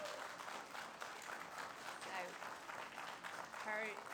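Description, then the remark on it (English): A steady wash of audience applause for a student's 3.93 grade point average, dense and continuous for several seconds, with a few voices calling out and cheering over the clapping. “She deserves another round of applause for that.”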